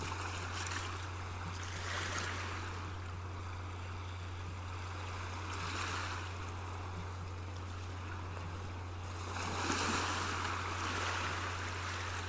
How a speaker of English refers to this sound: For those of you who already finished, continue to listen to the sounds of the ocean, allowing your worries to wash away.